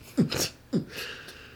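Two quick sneezes in a row, each a sharp voiced intake followed by a breathy, hissing burst, the second a little briefer than the first, with no talking around them.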